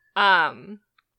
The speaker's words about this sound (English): Sorry, a crow just flew by laughing at me. Terrible.